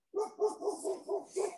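A dog barks in a quick run of about six sharp yaps, evenly spaced, with no other sounds around it.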